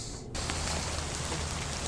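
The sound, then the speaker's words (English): Heavy rain pours down in a dense, steady hiss that swells in abruptly after a brief quieter moment and then holds loud, with no voices. “It's raining though. It's pouring today.”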